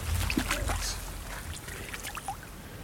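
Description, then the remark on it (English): Irregular splashing and sloshing of water as a hooked fish of about 8 ounces thrashes at the surface, with bursts of churning movement over a low rumbling background. “Oh, splashing around.”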